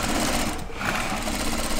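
Eight sewing machines stitching fleece garments together in the American Roots warehouse near downtown Portland hum and rattle steadily together, a dense, continuous mechanical whir with a fast rhythmic clatter running through it and no voices.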